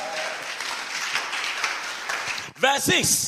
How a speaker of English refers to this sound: Can you give that all a clap of offering in the church?